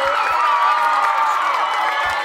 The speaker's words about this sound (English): big thanks to East Point City Council member NAACP VP Karen Renee. I got to give her. Let me give her applause, man. She was off the chain.